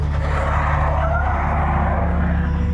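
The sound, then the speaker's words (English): A compact car skids on black ice, its back end spinning out, with a continuous rough hiss of tires sliding over a low, steady engine rumble, a faint squeal rising briefly in the middle. Loud, with no voices. “The compact car began to slide as soon as it hit the ice. Its back end started to spin out.”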